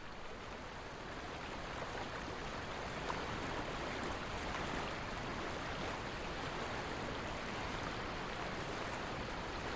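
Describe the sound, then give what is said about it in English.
A river rushes steadily downstream of Skógafoss, a 60-meter-tall waterfall, a dense, continuous roar of churning water that stays loud and even throughout, with no voices. “We begin downstream at the river and move closer to the 60-meter-tall waterfall, Skógafoss.”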